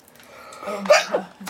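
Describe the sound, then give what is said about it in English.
A single sneeze: a short voiced intake building into a sharp, noisy burst with a brief trailing catch, moderately loud and heard on its own without any talking. “Bless you.”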